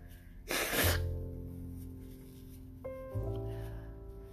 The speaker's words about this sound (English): Hold on, I'm going to blow my nose.